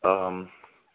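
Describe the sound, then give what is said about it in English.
A single house cat meows, fairly loud: a drawn-out harmonic cry lasting about half a second before trailing off into quiet. No one speaks over it. “Shut up, you crazy feline.”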